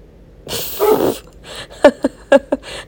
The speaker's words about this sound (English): Sorry about that. Nero has apparently spotted something outside that he needs to guard dog about.